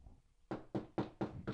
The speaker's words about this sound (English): That's the better. Wood. The wood's way better. You're knocking lightly, you dickhead.